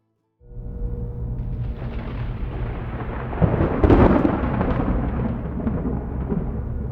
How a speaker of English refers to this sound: Deputy Waylon Dupree winced when the first wave of thunder shook his patrol car. It was low and rumbling, as if the earth beneath him were crashing through the canopy of asphalt to take hold of him.